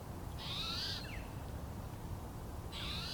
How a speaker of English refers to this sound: Listen to that bird. Oh. Yeah, beautiful.